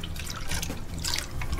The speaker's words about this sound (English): And we're just going to add one little special dash of Grandpa's ginger beer.